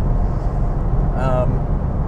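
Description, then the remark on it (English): A steady, loud low rumble of road and engine noise from a car in sixth gear cruising at about 70 miles per hour on a freeway, continuous throughout, with the car's 70-mile-per-hour warning chime cutting in around the middle. “I'm on the freeway here.”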